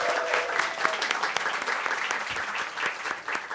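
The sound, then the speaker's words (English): An audience gives the evening's speakers a round of applause before a debate, many hands clapping steadily and overlapping into a continuous crackling wash that holds an even loudness for a few seconds. “So can I get a big round of applause for our speakers tonight?”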